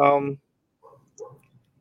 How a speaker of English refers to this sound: it's a full set of seven dice of the standard gaming sizes shapes. I'm pulling them out now. I've got a little purple bag where they come in, and that new dice sound.